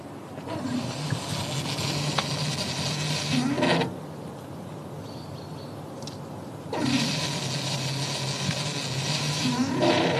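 A hydrogen fuel pump, started by pushing buttons on the machine, fills a van's tank through a nozzle snapped into the vehicle with a loud, steady hissing rush that cuts out briefly, leaving a quieter low hum, then surges back just as strongly.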